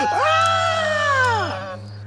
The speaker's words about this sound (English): jump up and scream.